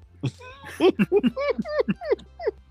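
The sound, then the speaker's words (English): A person imitates a dog barking with a quick string of about eight voiced, yappy woofs, loud, with a low steady hum beneath. “Why are you barking?”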